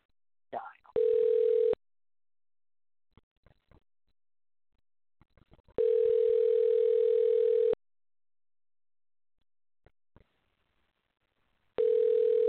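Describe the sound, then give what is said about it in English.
A telephone line tone sounds in steady, two-second electronic bursts, three times with long silent gaps and faint clicks between, like a call ringing through on the caller's end. No one speaks. “I'm trying to call you, and you did answer, so it's the right phone number.”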